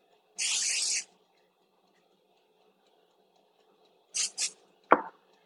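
A hissing burst of aerosol vegetable cooking spray lasting over half a second, then two quick short spritzes a few seconds later, followed by a sharp clunk, with no talking.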